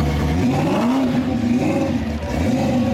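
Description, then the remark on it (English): An American muscle car's large V8 engine with a cross-plane crank rumbles with a deep gurgle, its pitch swelling and dipping through a couple of revs in a steady, loud run with no voices. “A large engine with a cross-plane crank, an uneven and non-alternating firing order, all adds up to the American muscle car's familiar gurgle at low RPMs and roar at high RPMs.”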